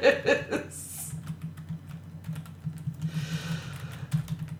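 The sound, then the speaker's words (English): Rapid clicking of keys on a computer keyboard, steady for several seconds, with a brief burst of laughter at the start. “Oh, I hated typing that.”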